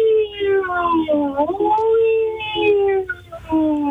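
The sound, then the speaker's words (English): A voice imitates the siren of an ambulance coming into an ER, holding a loud, steady wail with rising and falling pitch glides for about four seconds, with no other sounds. “Then I heard a siren from an ambulance that was coming into the ER.”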